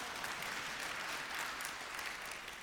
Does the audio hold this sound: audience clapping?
yes